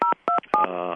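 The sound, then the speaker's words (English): Three short telephone keypad tones beep in an even rhythm, each a clear two-pitch button press, from a daughter upstairs on the phone, then a steadier tone carries on to the end. Loud, with no talking. “Girls, hang up the phone, please. That would be my daughter upstairs.”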